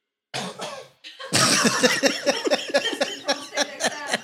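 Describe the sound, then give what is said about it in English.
After a moment of silence, one person in the background of a comedy show audience coughs harshly, followed by a longer run of loud, rough, repeated hacking coughs, with no talking. “One nigga in the background, only one coughing, like, oh. That one dude that still got COVID, right?”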